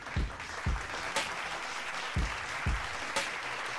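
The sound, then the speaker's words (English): A round of applause for the leader of the Pulse 95 Fantasy Football League: steady, dense clapping at moderate volume for several seconds, broken by a few dull low thumps and sharp clicks, with no voices. “So let's just give him a round of applause.”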